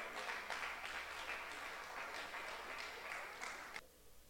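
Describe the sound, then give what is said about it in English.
An audience claps for the Lord together in a steady, dense burst of applause, then cuts off abruptly near the end, leaving a quiet hush. “That faith, clap for the Lord.”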